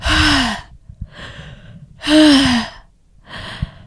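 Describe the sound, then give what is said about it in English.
An adult voice imitates a 4 or 5 year old girl's labored breathing: two loud, strained rasping inhales alternating with softer, breathy exhales, steady in rhythm with no speech. “When she came into my office, she was labored breathing. Imagine a 4 or 5 year old child like this.”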